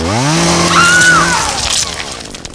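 A chainsaw engine revs loudly for about a second, its whine climbing, then sputters and dies away into a rough, crackling rattle as it runs out of fuel.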